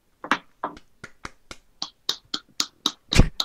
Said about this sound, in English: Okay, claps for the Siberian Husky.